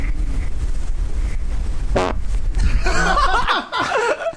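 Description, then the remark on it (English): A short, buzzing fart rips out over a low rumbling background, followed by a burst of snickering laughter from several people. “Is that a queef? That is a fart.”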